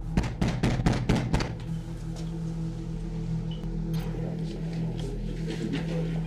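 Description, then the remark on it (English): A quick series of about six loud, hard knocks by police officers on the front door of a house in the first second and a half, then only a steady low background hum with no voices. “As they reached the front door, they knocked loudly for a couple of minutes”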